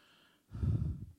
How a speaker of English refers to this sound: And y'all don't want to hear me breathing, so check, test.